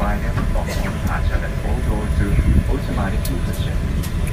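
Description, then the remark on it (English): A steady, low airliner cabin drone in a new Virgin plane on a Hong Kong to Heathrow flight, in premium economy: a constant engine rumble in flight with a faint airy hiss, while a person talks over it. “It's a new Virgin plane. The seats are so wide.”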